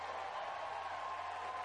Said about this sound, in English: So what are they all cheering about?